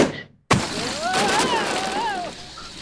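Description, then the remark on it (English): An inflatable sumo suit pops with a sudden burst while worn, sending the wearer flying around the room like a balloon, followed by a loud, steady rush of escaping air that carries a wavering, whistling squeal for about two seconds. “So the sumo suit popped and you flew around the room like a balloon.”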